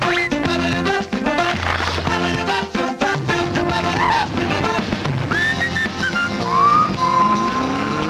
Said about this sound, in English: It starts off with them on a motorcycle, Porkchop and Doug, and then Skeeter comes down on a skateboard. Just play a couple more seconds because I do like the whistling.